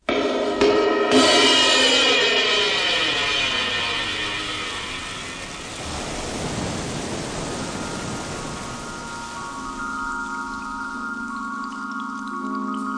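A continuous roar of surf washes along without a break, swelling and easing slightly, with steady droning musical tones layered over the rushing water. No one speaks.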